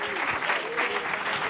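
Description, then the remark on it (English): An audience claps their hands in welcome for a preacher at Bendale, steady, dense applause, a continuous wash of many hands, with faint voices mixed in beneath the clapping. “Man, while you're clapping your hands, why don't you lift your voice and give God a shout of praise?”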